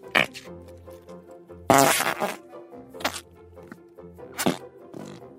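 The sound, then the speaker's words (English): A long, sputtering fart, fairly loud, rumbling along for several seconds with a series of wet, buzzy bursts and pops, with no talking. “Want to hear this fart, buddy?”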